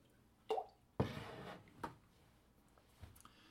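A quiet swig of water: a wet plop and a gulping swallow, then a couple of soft wet clicks and a faint drip-like sound, with no talking.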